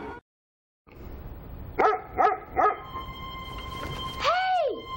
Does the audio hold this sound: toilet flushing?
no